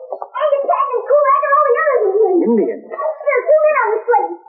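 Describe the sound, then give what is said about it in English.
A sled dog team howling together in long, wavering, overlapping wails that rise and fall without a break, fairly loud, with no distinct barks standing out. “Dogs. I heard them, too. Could they be coming back?”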